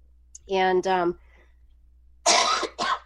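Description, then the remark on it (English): A person coughs, starting with two short, rough voiced hacks, then after a brief pause two harsher, breathy coughs in quick succession. “And I apologize if you're going to have to actually edit out me coughing.”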